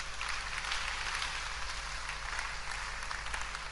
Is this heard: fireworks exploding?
no